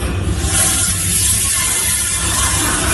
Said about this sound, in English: You hear the toilet flush.